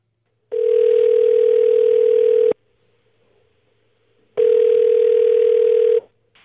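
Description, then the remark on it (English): A telephone ringback tone on an outgoing call: two steady, buzzy two-second rings separated by a pause of silence, heard clearly through a narrow phone line with no one speaking. “I'm hitting the last number and it is going to ring.”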